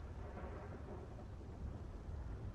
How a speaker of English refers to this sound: Oh, man. It's raining out.